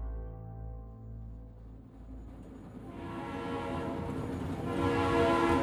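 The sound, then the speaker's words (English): An express train out of Omaha rumbles steadily along a quiet stretch of the Rock Island Railroad's tracks near Adair, Iowa, about 8:30 p.m. on July 21, 1873, as it grows dark; its low mechanical churning builds and grows louder as it approaches, with dense rhythmic clatter filling the last few seconds. “An express train out of Omaha chugs along a quiet stretch of the Rock Island Railroad's tracks near Adair, Iowa.”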